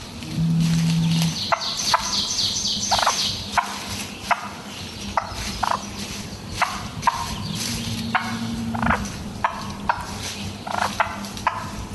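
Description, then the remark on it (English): A hen turkey purring, a low steady rumble dotted with a dozen or so short, irregular clucking pulses, with no voices present. “Lady turkeys make sort of kind of a purring sound.”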